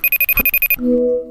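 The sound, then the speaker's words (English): A phone rings loudly with rapid, evenly spaced high-pitched electronic beeps, about nine in quick succession, then a lower, steady tone that holds for about half a second. No voices are heard. “What the hell? Is that my phone?”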